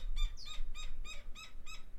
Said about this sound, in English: Damn bird.